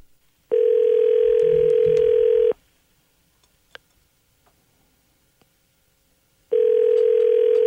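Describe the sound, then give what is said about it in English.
A telephone call to a gas station in Port Dover rings on the line: two long, steady buzzing ring tones separated by a few seconds of near silence with faint clicks, heard through the receiver. “Let's see if she's working this morning. Get the number here.”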